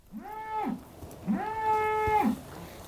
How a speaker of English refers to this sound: We're next to a group of cows, as you may hear.